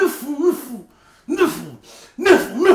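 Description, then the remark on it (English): A person makes three loud, voiced sneeze-like bursts with short gaps between them. The sounds have a tonal, vocal quality, like someone imitating sneezes rather than sneezing naturally. “Bless you, bro.”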